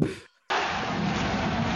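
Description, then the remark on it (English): Fireworks celebrating Norwich being top of the Premier League go off in a dense, continuous roar of bangs and crackles, interrupted by a brief moment of silence before the rumbling explosions resume at full loudness. “And those fireworks celebrate Norwich on top of the Premier League.”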